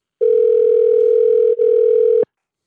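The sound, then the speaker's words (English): A single loud, steady electronic ringback tone of about two seconds, the line ringing on an outgoing phone call to a former Michigan football captain, with a very brief dip near the end before it cuts off. “I'm ringing it.”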